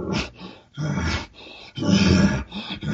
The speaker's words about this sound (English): And anytime a bull pants, it shows excitement. He does not pant for no reason. It can be excitement toward a cow or the situation he's. As he gets worked up, he can even use it as a excitement to a frustration before he bugles.